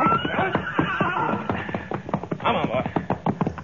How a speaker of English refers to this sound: All right, you take the gray horse